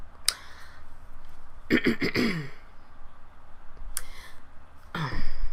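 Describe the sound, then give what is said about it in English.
A person clears their throat with a rough, raspy burst, followed by a couple of shorter throaty sounds and sharp breaths, with no words spoken. “I just played myself clear my throat and everything, and my whole mind went blank.”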